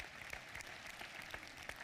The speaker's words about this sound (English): Amen. You can clap. That's great.